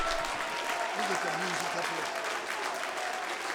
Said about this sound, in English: Stand to your feet, clap your hands for what did not happen.